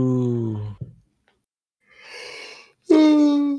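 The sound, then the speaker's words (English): A yawn: a short voiced sound, a pause, then a long breathy inhale that swells into a loud, drawn-out vocal groan before it cuts off. “Oh, don't yawn in the podcast, man.”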